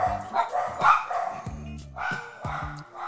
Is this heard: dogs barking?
yes